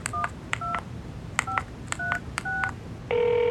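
Telephone keypad dialing an elevator hotline number: about seven short touch-tone beeps pressed at an uneven pace, each with a faint click, followed by a steady sustained line tone. No one speaks.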